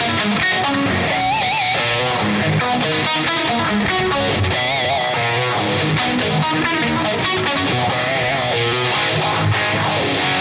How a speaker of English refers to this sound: So the modulation phaser is in on that one for sure.